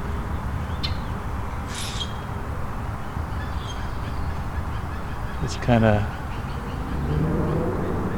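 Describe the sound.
A few sharp, metallic chink calls from common grackles ring out at irregular intervals over a steady outdoor background, with a louder honking call partway through and a person speaking briefly.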